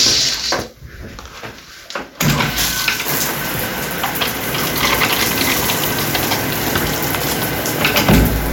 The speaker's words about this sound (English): That is a shower. And this is a bathroom.